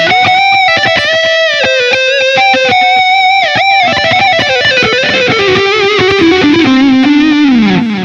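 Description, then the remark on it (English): A heavily distorted electric guitar plays a fast, fluid lead line, with sustained bends and quick runs sliding downward near the end, loud and upfront with no talking. “And then I have what I like to call my cheese kill lead sound. This has got a lot of distortion on it.”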